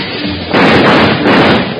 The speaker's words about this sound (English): While Bill and Jingles were searching through the train for the bank robbers, when they opened the door to a dark vestibule and sudden gunfire crashed around their ears.